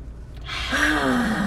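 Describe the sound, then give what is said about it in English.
An audible deep breath drawn in, then let out as a long, slightly voiced sigh, fairly loud against quiet background, with no talking. “Like, the breathing in and breathing out.”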